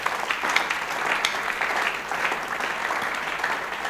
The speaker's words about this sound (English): Today, the service was not good. I said, today, the service was not good. The way you are clapping tells it all.